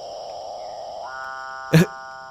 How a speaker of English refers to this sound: This is a capuchin bird. It sounds like somebody moaning, like a cat being killed in the woods.